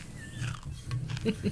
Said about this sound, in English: Oh, hey, fortune cookie. Oh, that's been on my desk for a long time. Wow, that is crunchy.